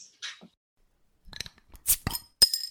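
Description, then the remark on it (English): Beer drinks clink together in a toast: a handful of sharp, bright knocks and rattles, spaced irregularly over a couple of seconds, with no talking. “So Matt, cheers when you crack yours open.”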